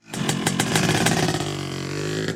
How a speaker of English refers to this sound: Sounds like a motorcycle gang, and we don't have backup. We better lay low.